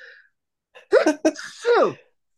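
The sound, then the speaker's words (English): A loud sneeze with a sharp sudden burst and a short breathy tail, preceded by a quick intake of breath. “I'm gonna sneeze.”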